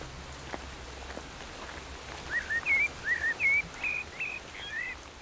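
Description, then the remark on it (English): Birds sing a series of short, bright whistled phrases in quick succession over a steady hiss of rain, the calls clear against the soft wet background. “Hearing the natural sound of birds.”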